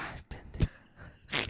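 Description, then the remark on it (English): A person yawns right up against the microphone, with a drawn-out, breathy inhale and exhale, a brief sharp catch partway through and a hissy release at the end. No one talks. “don't fucking yawn on the mic”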